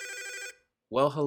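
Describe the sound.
A single short burst of an electronic telephone ring, clear, cuts off abruptly; after a brief silence someone starts speaking.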